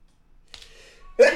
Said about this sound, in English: Oh, big sneeze.